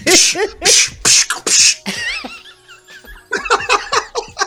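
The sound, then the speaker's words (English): A voice imitates old 70s kung fu fight noises: a string of sharp, breathy shouts, a wavering high-pitched wail, then a quick flurry of clipped yelps, with laughter mixed in. “Why you use the old 70s kung fu noises?”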